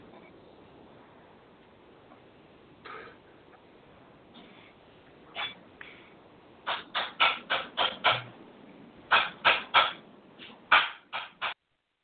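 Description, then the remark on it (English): Keyboard typing: scattered keystrokes at first, then quick bursts of sharp, clicky taps in uneven rhythm, fairly loud against a quiet, hissy background with no talking. “Eerie silence. What's going on? I'm typing.”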